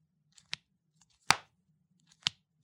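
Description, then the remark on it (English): A folding phone hinge snaps open and shut: three crisp mechanical clicks, the middle one loudest with a short rattling tail, plus a few faint ticks between them. No one speaks. “God, the hinge is so great. That sounds fantastic.”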